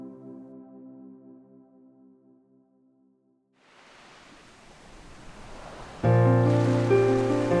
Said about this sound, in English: The sound of the sea, relaxing waves, and soothing music.